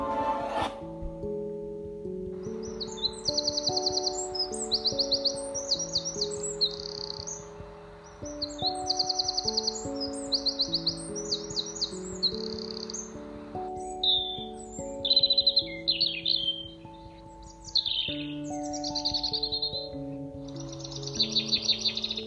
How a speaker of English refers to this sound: chirping of birds